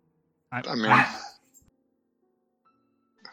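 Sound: dog yelping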